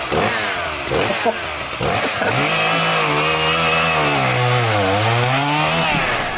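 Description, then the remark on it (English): A chainsaw revs in a few short bursts, then runs loud and steady as it cuts into wood in a workshop, its engine pitch sagging under load before climbing again. Continuous, with no voices. “Sandy Wilson is a wizard with a chainsaw”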